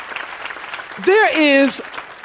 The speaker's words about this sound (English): If you agree with that, clap your hands. Would you do that?